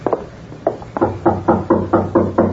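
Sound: knocking on a door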